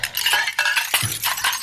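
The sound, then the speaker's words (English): Dishes clink and clatter continuously in a castle, with bright, ringing metallic chimes and several sharp knocks scattered through the busy jangle. No one speaks. “Oh, there are a lot of dishes in here.”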